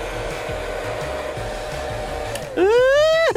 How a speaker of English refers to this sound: In that case, we'll finish off with the hair dryer.